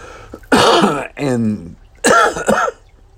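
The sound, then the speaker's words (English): A person with a lingering cough from a bad cold coughs sharply, then clears their throat with a rough, voiced rasp, followed by another harsh cough and a second throaty clearing. Loud, with no talking. “and my cough is just hanging on.”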